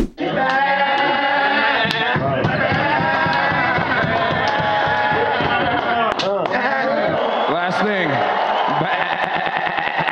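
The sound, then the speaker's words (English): Loud goat bleats with wavering, quavering pitch sweep over a dense, busy backdrop of layered sound, filling the whole stretch without pause. “when you hear that baa. It's time for goat talk.”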